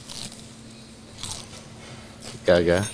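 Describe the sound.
Crisp, crackly crunches of someone biting into very crunchy flappy fried chicken, three short bursts about a second apart, followed by a brief voice speaking at the end.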